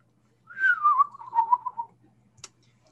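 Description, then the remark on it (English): A person whistles an imitation of birds making their calls at sunrise: one warbling, gently descending phrase lasting over a second, fairly loud, followed by quiet and a brief click. “Start to hear the birds make their calls”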